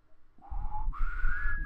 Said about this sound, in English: I can't fucking whistle.